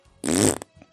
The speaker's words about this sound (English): The fart noise is unintentional. Sometimes that just happens.